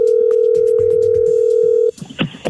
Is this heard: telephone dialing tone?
yes